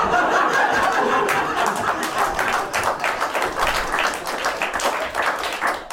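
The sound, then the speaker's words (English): A crowd of £10 Patreon backers cheers and whoops loudly with scattered clapping, a dense, steady roar of voices and applause lasting several seconds. “If you're a £10 backer, let out a cheer.”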